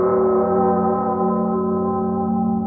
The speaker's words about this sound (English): Well, they're probably different, because those were actually other bells slowed down that I used on the album. They just sounded like that